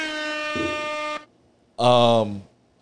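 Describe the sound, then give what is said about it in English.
Two loud, brassy air horn sound-effect blasts, played as a shout-out to a DJ: a long steady one lasting about a second, a short pause, then a shorter, slightly different-pitched blast, with no talking. “Let me hit … the air horns.”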